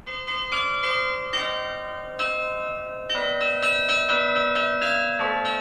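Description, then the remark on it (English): Church bells ring out a hip-hop melody, striking a quick series of overlapping notes whose tones hang and ring together. The bells are loud and alone, with no voices. “Mixing church bells and hip-hop might sound crazy or gimmicky, but it's kind of a throwback to the old days of bells and bell ringers”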